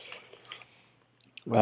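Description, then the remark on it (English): A short sip of a homemade tea made with lemon, lemongrass, honey and cinnamon, with a soft wet slurp, then a brief pause before someone starts talking. “I'm drinking some Louisiana swamp water.”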